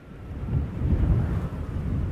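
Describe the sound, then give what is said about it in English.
A deep, continuous rumble of thunder rolls steadily through a storm, swelling slightly in the middle and staying low and heavy throughout, with no voices present. “A typical thunderstorm discharges enough energy to power New York City for 26 minutes.”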